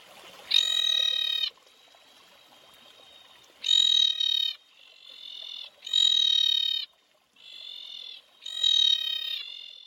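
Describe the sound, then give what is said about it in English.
A screaming tree frog calls in loud, harsh, buzzy bursts about a second long, repeated several times with short gaps and softer calls between them, clear with no talking. “This is what the screaming tree frog sounds like.”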